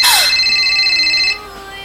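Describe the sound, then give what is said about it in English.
A phone rings with a loud electronic trill of steady high-pitched tones. It lasts just over a second, then cuts off, leaving a quieter lingering hum. “A dream interrupted by a phone call.”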